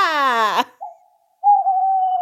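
An owl hoots: a loud, rich call sliding downward, followed after a pause by softer, steady hooting tones that hold level until the end. No one speaks.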